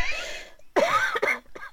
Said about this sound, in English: That's made you cough a lung up. Thanks for that.